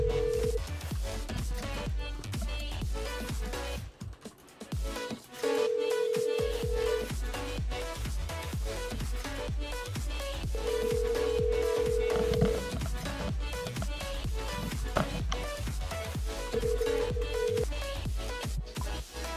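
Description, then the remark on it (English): A telephone call being placed to a person's number: dialing tones, then a ringing tone that repeats every few seconds over a dense, steady electronic hum. No one speaks. “Can't say we're not trying to give him his PIN number back. I think this is the number.”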